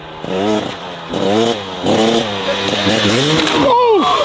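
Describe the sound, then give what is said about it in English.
A motorbike engine revving in repeated rising and falling bursts, loud, with a strongly voice-like quality, as if someone is imitating the revs vocally; the motorbike is taken out as it gets cool in Buffalo. “And of course, you thought it'd be a great time to get the motorbike out, didn't you?”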